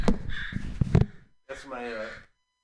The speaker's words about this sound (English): That's my notification. That's my notification when I get people are after me. Is it just crows? It's crows, yeah.